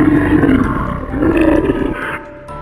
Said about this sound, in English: The familiar stretched out his arms and let out a roar.